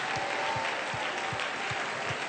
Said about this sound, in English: Would you clap your hands and thank the Lord for forgiving you right now?